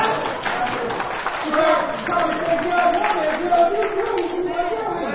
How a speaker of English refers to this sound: Can I get a hand clap?